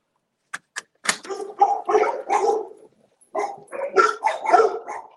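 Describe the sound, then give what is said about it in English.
A couple of sharp clicks, then dogs barking and yelping excitedly in two long, overlapping bursts, loud and continuous with a brief pause between them, as a door is opened to let the dogs in. “No barking though, guys.”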